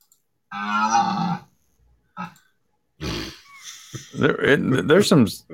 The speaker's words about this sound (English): That was a clip of the half human, half deer. So it sounded like a cow to me.